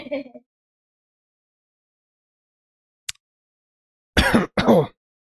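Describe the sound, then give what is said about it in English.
Two quick, harsh coughs after sipping Macallan scotch, following a brief sharp click and otherwise quiet surroundings. “Oh, the scotch made me cough.”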